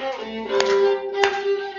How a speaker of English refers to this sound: Okay, some clapping.